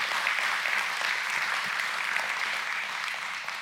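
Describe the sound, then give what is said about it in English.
An audience applauds the team that led the church during the week in a sustained, dense round of applause, steady and fairly loud throughout with no voices standing out, the many overlapping claps blending into a continuous wash. “Let's give them a round of applause for me.”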